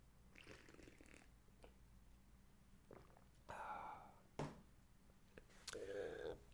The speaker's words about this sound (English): Taking a sip of coffee.